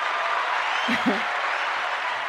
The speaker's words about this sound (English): Okay, we'll go with that. An applause.